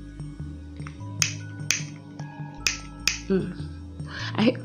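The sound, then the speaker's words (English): A lighter is flicked repeatedly: four or five sharp, crisp clicks in an uneven rhythm, none catching a flame, over a low steady hum, with a short mumbled voice toward the end. “I hear my lighters are not working, and my filter just like, I really don't roll the best blunts.”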